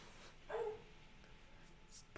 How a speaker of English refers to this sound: It's time for the dogs. Am I the only one that hears dogs?